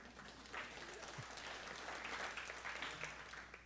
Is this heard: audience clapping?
yes